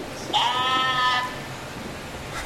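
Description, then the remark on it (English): A person imitates a sheep, letting out a single drawn-out, wavering bleat of about a second that rises at the start, clear, followed by quiet. “Why do you keep making farm animal noises like over there?”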